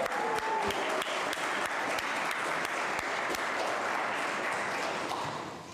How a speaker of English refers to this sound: Additional round of applause